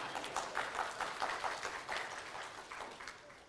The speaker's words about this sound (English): Can I get a round of applause on that?